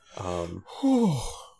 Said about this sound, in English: A gasp. I'm so sorry. It was a gasp.